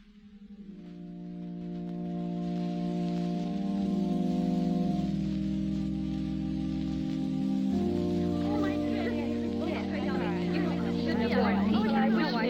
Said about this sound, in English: Wouldn't you just know it? Rain for a wedding.